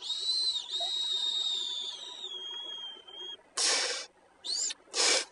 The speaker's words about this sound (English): Y'all hear the distant, faint whistle of a dab pen? That'd be me.